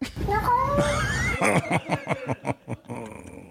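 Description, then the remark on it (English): A cat meows in a drawn-out, wavering cry over background noise, as if played from a video, followed by a run of short rhythmic bursts that sound like laughter. “it said originally the cat was saying”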